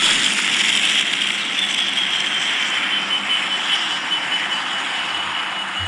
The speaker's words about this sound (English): Okay, I've got the solution here. So let's just start up my Tesla here. All right, here we go. Let's get it revved up.